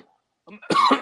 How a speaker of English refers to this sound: Ooh, you see, you over here coughing like that's the first time you drank this.